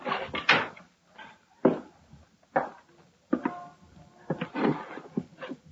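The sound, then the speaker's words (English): A door is handled and shut, a string of wooden knocks, bumps and a latch-like clack spread over several seconds, with no one talking. “And close the door.”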